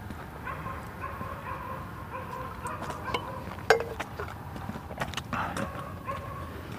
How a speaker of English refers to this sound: Dogs. Something's got every dog in the neighborhood barking.